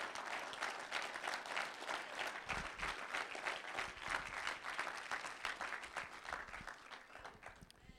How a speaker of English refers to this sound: Someone give God another hand clap of praise.